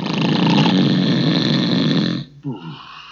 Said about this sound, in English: His head was nodding, and he began to snore so loudly that it sounded like thunder.